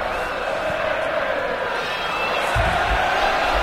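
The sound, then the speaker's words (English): A large football stadium crowd roars steadily, a dense wash of voices and cheering that holds at a constant level throughout, with a few low thuds near the end. “I can hear the sound of, like, a crowd in a football stadium.”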